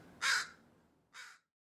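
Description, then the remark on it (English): Two harsh crow caws, a loud one followed by a slightly softer one about a second later, ringing out clearly against a quiet outdoor background. “Crows usually are scavengers, but there was a tree on the front yard where crows would actually bring, I don't know how to describe it any better than sacrifices.”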